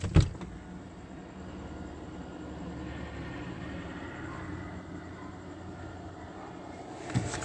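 A helicopter circles over Woodside Senior Apartments at 8:51 p.m., droning steadily with a continuous low rumbling whir that holds at a fairly even loudness throughout. Brief clicks and thumps break in at the very start and again near the end.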